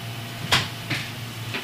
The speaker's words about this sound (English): close the door. Okay.